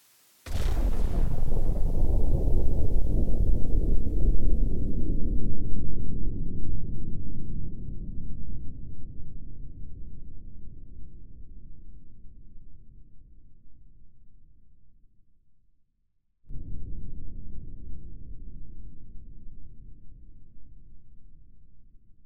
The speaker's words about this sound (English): And hear the sound of an atmospheric atomic explosion.